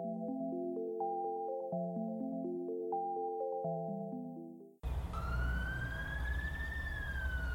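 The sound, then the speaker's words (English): Gentle stepped musical tones give way abruptly to outdoor rumble in cold weather, over which an emergency siren wails in a long, slowly rising sweep, steady and somewhat distant. “Did you hear that? Hear what? The siren.”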